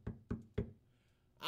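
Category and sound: impact, knocking on a door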